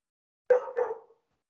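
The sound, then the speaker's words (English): A dog lets out two quick barks in close succession, clear, with silence around them and no one talking. “I think our dog agrees with you.”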